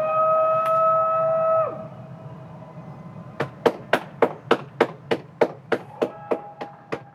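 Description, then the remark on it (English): Outdoors at 8 p.m., as neighbours cheer for healthcare workers, a sustained horn-like tone holds for a moment and cuts off, then a steady run of about fourteen sharp, evenly spaced claps or bangs rings out, with no talking. “Everyone's cheering for the healthcare workers. It's 8 p.m. and I just stepped outside and you can hear it.”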